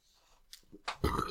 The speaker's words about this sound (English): Ooh, that was a bubbly one? It was a starchy burp. It was a bubbly burp. There's those burps after you eat a bunch of fries, and it's just like, you have to feel the burp maneuver around all the fries in your gullet. Yeah. A lumpy potato burp.